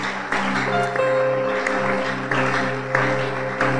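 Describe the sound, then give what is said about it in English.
A church audience claps steadily at an Honor Your Prophet Sunday service, a dense, continuous wash of applause, with sustained musical tones like an organ holding underneath and no voices coming through. “Oh, it's a good place to clap, and I'll explain.”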